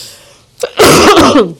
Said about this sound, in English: Yeah, I'm muting myself because I'm coughing over here.